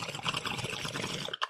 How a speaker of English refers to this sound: Ooh, everyone drink when you hear bubbles.